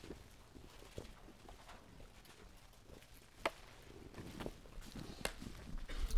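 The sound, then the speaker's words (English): Many Bible pages being turned at once as people turn to Ephesians chapter 4, verse 20, a soft continuous papery rustle scattered with crisp flicks and taps, growing a little busier toward the end, with no one speaking. “Oh, I love to hear all the rustling of the pages.”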